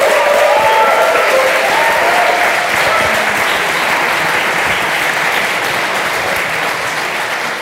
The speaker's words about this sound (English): Thank you to everybody in the room for coming along. Give yourself a round of applause.